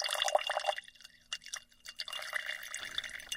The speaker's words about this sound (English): All the fluid that's still kind of floating around with pigment, I'm going to pour that into a different jar and save it.